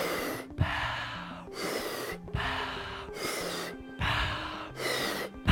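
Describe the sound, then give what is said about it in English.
Rapid, forceful breathing during a guided breathing exercise, about five heavy breaths in and out in a steady driving rhythm, each a loud airy rush with brief pauses between. “Keep on breathing and in and out.”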